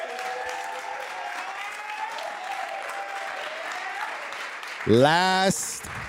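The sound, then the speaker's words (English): An audience claps steadily throughout for a man being celebrated, a dense wash of applause mixed with scattered cheers, and a loud, rising whoop from someone bursts out near the end. “Round of applause for this man.”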